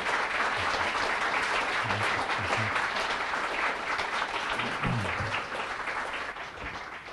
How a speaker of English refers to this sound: So if you could please give a big round of applause to His Holiness.